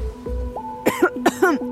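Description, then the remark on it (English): Three quick, harsh coughs in a short burst, clear, with a steady faint tone humming underneath and no speech; people coughing amid worsening air pollution in the north. “People coughing is the new bird singing.”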